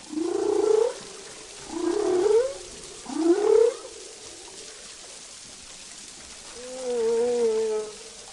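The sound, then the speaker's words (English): Humpback whale song: three rising, moaning upsweeps repeat about a second apart, then a pause before a longer, wavering tonal call, all heard alone over a steady underwater hiss. “So it was clear that maybe Raoul is one of those places where sort of this cultural handover of song information may occur.”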